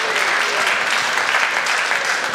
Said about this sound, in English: Feel free to cheer for a second. That's fine.